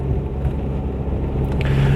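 vehicle, car driving in traffic

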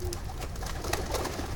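bird, doves cooing

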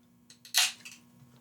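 household object, drink can being opened

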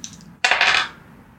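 household object, dice rolling

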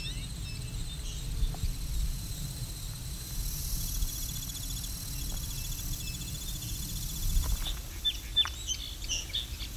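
bird, american goldfinch calling

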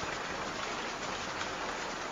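nature, rain falling

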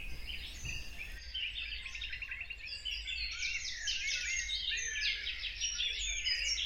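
bird, dawn chorus birdsong

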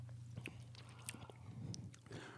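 food or drink, chewing candy

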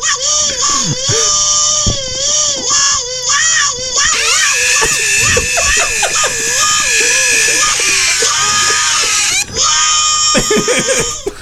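bird, bird screaming

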